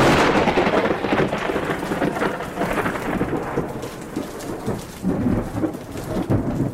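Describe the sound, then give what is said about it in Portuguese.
Heavy rain pours steadily while deep thunder rumbles loudly throughout, a dense, continuous storm with no voices. “coloca todos os trovões possíveis aqui hoje, assim.”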